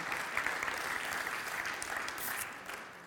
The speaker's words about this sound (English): Thanks to the team for just rushing on and laying everything out. Big round of applause for Ken and his team.